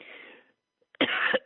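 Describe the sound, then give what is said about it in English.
A harsh cough bursts out loudly after a brief pause, following a softer breathy rasp at the start. No talking is heard. “I'm going to be coughing, I can tell.”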